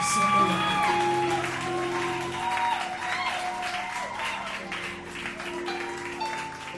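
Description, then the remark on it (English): A church audience claps for Jesus steadily and loudly for several seconds at a Sunday morning service, a dense wash of hands with some cheering voices, while sustained keyboard or organ tones hum underneath. “Give Jesus another hand clap.”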